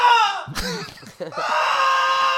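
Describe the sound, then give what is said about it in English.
A voice imitates loud, high-pitched screaming coming from upstairs: a strained wail, a brief choppy break, then a long sustained shriek that holds steady to the end. “As he asks, he hears the loud screaming from upstairs along with...”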